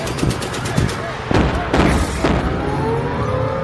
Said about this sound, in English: The midnight sky is lighting up now. It looks like Moscow is under attack. Anti-aircraft guns are roaring. I can see green tracers coming from every direction.